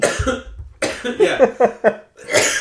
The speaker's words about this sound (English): So. Man, you are like, you really are a loud cougher. And people say that when we listen that you cough a lot. Give a fuck. No, I know, but it's like it's loud, and I'm like, yeah, it is really loud.